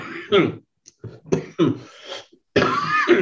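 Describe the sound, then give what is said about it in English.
A series of harsh coughs and throat-clearing bursts from someone who has just tested positive for COVID, several in quick succession with short pauses, ending in a longer rasping cough. “Excuse me for a little coughing there.”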